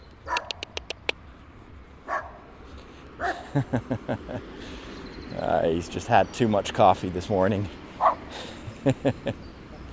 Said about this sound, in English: hey, the little doggy is mad at me. I don't know why. I'm not in his garden. Hey. Hey, buddy. Hi, buddy.